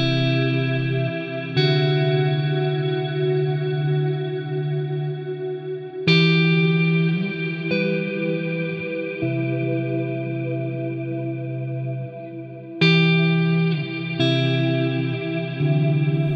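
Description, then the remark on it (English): Sustained electric guitar chords played through the Ironverb reverb plugin ring out with a lush reverb wash, new strums arriving every few seconds and their tails blooming and lingering between hits. No voices, just the effected guitar. “So our next little demo here is guitar. Let's have a listen. There it's on.”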